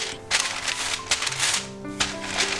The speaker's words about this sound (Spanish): Lo pongo entre dos papeles vegetales y estiro la masa.